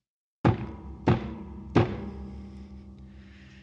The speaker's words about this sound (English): And as if on cue, there's a loud knock banging on the door.